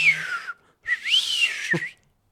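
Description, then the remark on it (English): Two bright whistle tones with no talk: a short downward slide, a brief pause, then a longer whistle that rises, wavers at a high pitch and drops away. “So you're saying fat people should put a whistle on their toilet paper?”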